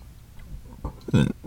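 A single deep, guttural belch from a black bear rumbles out near the end, loud, preceded by a few soft grunting huffs against a quiet outdoor background at night.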